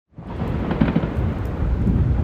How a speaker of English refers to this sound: Can you hear those? You hear those booms, not thunder, although it was raining. Those are fireworks just after midnight on New Year's, what I could hear from downtown LA.